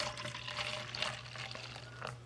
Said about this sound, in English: Hopped with a state-grown Cascade Dry Hop Citra, a truly New York homegrown beer. Crisp with fresh citrus notes. Currently, this beer is only available in a growler, so I'm going to have to untwist one and pour it out today.